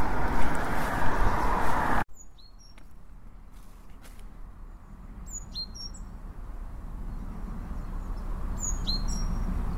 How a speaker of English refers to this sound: Always amazed by birdsong, how much noise they manage to produce from such tiny, tiny bodies. It's kind of miraculous. They're like the perfect musical instruments in many ways.